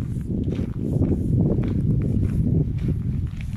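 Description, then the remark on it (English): Steady footsteps crunch over loose stones in an even walking rhythm during a stroll through a patch of marshland behind apartment blocks on a windy day, while a constant low rumble of wind buffets underneath throughout. “The crunching of the stones beneath my feet felt downright therapeutic”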